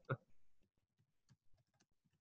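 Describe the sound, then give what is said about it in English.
Someone types on a computer keyboard, a quick, irregular run of soft clicking keystrokes with brief pauses, starting with one sharper tap, while typing the answer to a question about sharing resources and links. “A good question came in. I'm typing the answer to it, just about how we're going to share these resources and links.”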